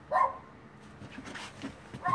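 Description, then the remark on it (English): Dogs bark in short, sharp bursts, one near the start and another at the end, with softer yips and whining in between, fairly quiet overall. “I gotta yell at my dogs.”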